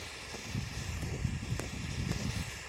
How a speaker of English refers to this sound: This is just a little steady breeze.